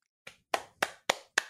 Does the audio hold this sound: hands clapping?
yes